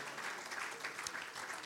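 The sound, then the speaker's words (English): A crowd claps their hands to give thanks to God for living in the United States, a dense wash of many hands clapping at once with no single claps standing out, holding an even moderate level throughout with no voices on top. “I wonder, can we clap our hands and give thanks unto God for the privilege of living in this country?”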